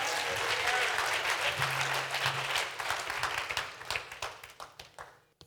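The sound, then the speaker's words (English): An audience claps for the Lord in a dense burst of many hands clapping, loud at first, then thinning into scattered, sharper individual claps as it dies away, with faint voices mixed in underneath. “Shout hallelujah. Somebody clap for the Lord.”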